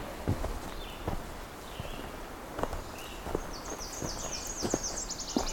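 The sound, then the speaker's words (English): A Nashville warbler sings a high, thin series of repeated two-note chirps that speeds into a quick trill at the end, while soft crunching footsteps thud steadily underneath. “Okay, we have a Nashville warbler.”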